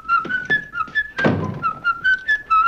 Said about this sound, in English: So Jimmy, the first time we see Jimmy is he's in England whistling Yankee Doodle. And it's nice form there on Jimmy's part.